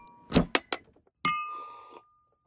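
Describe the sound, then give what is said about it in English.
Glasses clink together in a toast a few times in quick succession, bright, followed by one louder clink that rings out briefly before fading. No one speaks. “Cheers. Cheers to that. To clowns.”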